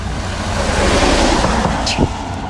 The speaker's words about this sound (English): Damn, that's a loud ass car.